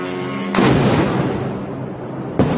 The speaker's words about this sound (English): Moscow's mayor took to social media to say a drone attack in the Russian capital city caused, quote, insignificant damage to several buildings. So on Tuesday morning, a lot of Russians woke up to the sounds of explosions.